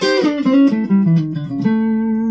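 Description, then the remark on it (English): Electric guitar, a Telecaster, played on the neck pickup: a short melodic phrase of single notes stepping downward, then settles on a sustained ringing note; warm, rounded tone, clear with no talking. “And neck.”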